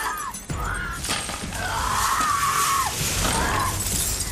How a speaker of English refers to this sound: When you saw those needles, like, and even the sound, that's why the needle were so scary to me. Because when she was digging through it, you could hear the sound of all the glass clinking.